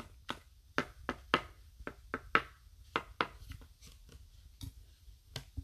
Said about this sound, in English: That was me hammering it in.